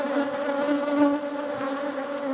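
Bees buzz steadily for a couple of seconds, a dense, droning hum with slight wavering in pitch and no voices.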